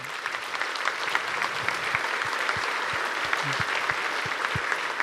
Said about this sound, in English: We want to recognize you, and we want to, you know, applaud you and say, way to go, awesome job.